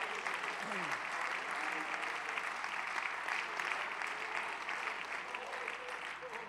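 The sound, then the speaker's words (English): An audience claps hands steadily, dense overlapping applause filling the whole stretch at an even, fairly loud level with faint voices mixed underneath. “Let's clap our hands.”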